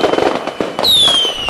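Fireworks go off: a quick series of sharp crackling pops, then a loud, high whistle that slides downward as a rocket streaks away, with no one talking.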